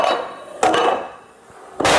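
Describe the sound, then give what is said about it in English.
A row of 13 dominoes toppling, with hard clacking knocks: a sharp strike partway through, fainter ticks after it, and a heavier crash at the end. No one speaks. “And if each of us do our part, we can knock over. That was 13 dominoes.”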